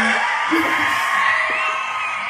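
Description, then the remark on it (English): A crowd applauds and cheers in a steady, dense wash of clapping, with whoops and yells rising through it. It stays loud and even for the whole couple of seconds, with no talking. “For those of you listening, we have been waiting for this applause to go off since Carly introduced herself.”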